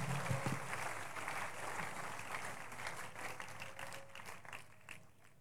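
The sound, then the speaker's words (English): A church audience claps steadily for several seconds as a clap offering to God after a testimony, a dense wash of overlapping handclaps that stays fairly even in loudness before thinning slightly toward the end. “Celebrate God with a clap offering.”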